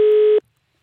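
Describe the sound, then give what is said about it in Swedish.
A single short burst of a steady electronic telephone tone, loud, buzzing for under half a second before cutting off abruptly into silence, as a call is placed to a Gothenburg number, an O'Learys restaurant. “försöker ringa ett Göteborgs nummer.”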